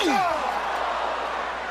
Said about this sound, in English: Oh, chair shot just makes you sick, makes your blood curl.